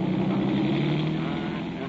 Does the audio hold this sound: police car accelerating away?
yes